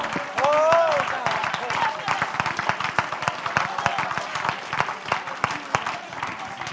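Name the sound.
audience clapping hands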